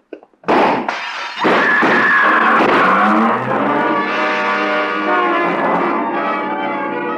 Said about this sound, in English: The shots came from a car, double parked. First, I saw the pistol come out of the window. Then I dropped, and from a prone position, I heard the rest.